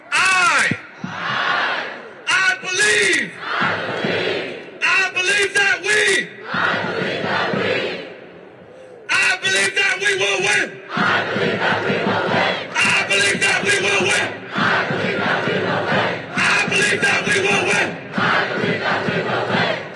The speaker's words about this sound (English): Before I leave the stage, I want to bring one of our favorite chants from back in the days with the Dream Defenders to you. So I need you all to participate. Repeat after me.